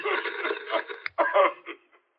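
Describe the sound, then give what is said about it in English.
Telephone line interference: a thin, band-limited crackle of garbled, indistinct voices surging in bursts over about two seconds, then breaking up and fading into silence. “I hear voices behind you. Sounds like interference.”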